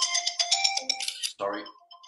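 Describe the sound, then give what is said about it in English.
A mobile phone ringtone plays a bright, rapid electronic melody of repeated high notes, clear, ending in a brief lower burst before fading out. “should always turn your phone off, shouldn't you?”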